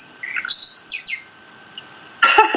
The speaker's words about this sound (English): So that's my verdict. My phone ringing. How embarrassing.